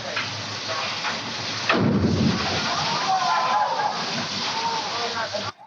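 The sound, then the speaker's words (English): In a movie theme park's water-tank effect, 800 gallons of water cascade down, starting as a steady rushing wash, then surging suddenly into a heavy, thundering torrent that roars on for several seconds before cutting off. “800 gallons of water come cascading down.”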